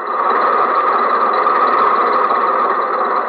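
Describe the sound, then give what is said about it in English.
A bus engine idles at a railroad crossing while a train stands at the crossing, a steady rumbling drone that holds at an even loudness throughout, with no voices and no change in pitch. “The bus has to pass the railroad crossing, too, and the train is at the railroad crossing.”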